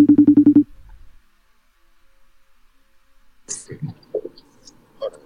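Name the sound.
telephone dialing and ringing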